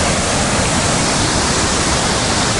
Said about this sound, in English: That's a pretty big waterfall. Not too bad.